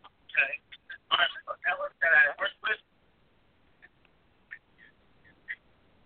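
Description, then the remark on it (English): Garbled, choppy bursts of distorted voice over a phone line for a few seconds, breaking up into near silence with a few faint, scattered blips. “Someone needed to mute their phone, or there was some background noise, but we can hear you, brother.”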